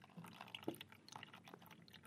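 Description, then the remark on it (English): Water displaced by an object placed in a tank trickles and drips steadily out of the tank's pipe to be weighed, a soft, continuous liquid flow with small splashes and no voices. “So basically, because the objects are taking up volume or space inside the tanks, they've raised the level of the water above the level at which the pipe comes out, and the water that's being pushed upwards is now flowing out and we're weighing it.”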